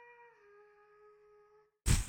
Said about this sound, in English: This isn't scary, it's a little kid. Sounds like a little kid humming.